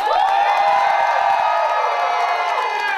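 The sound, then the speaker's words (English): A crowd cheers and shouts loudly as a person is introduced by name, with high whoops and screams layered over scattered clapping, a dense, sustained roar that stays strong for the full three seconds. “When I introduce someone and tell you their name, that's when you clap and cheer, all right?”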